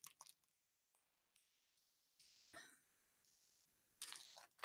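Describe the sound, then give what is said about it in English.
A deck of cards being shuffled: a few soft, crisp papery rustles early on, then a denser riffling burst near the end, low in volume, with no one talking. “Let me start shuffling. Just gonna start shuffling, okay?”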